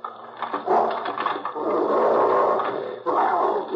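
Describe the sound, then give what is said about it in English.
Fred Harlan's dog growls steadily and loudly behind a door at his house, a rough, continuous snarl that swells and dips over a few seconds, sounding slightly muffled. No one speaks. “Seems to be no one here but the dog.”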